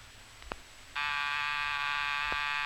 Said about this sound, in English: was that the front door buzzer? Yes, sir.